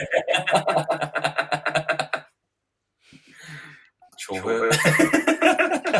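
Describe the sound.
A person imitates a horse whinny: a loud, trembling whinny, a brief pause with a breathy exhale, then a second quavering whinny just as loud.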